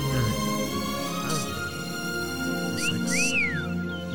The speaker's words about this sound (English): Someone's whistling.